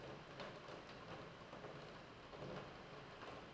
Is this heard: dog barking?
no